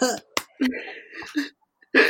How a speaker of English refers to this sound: You're coughing and snuffing your way through this lockdown episode.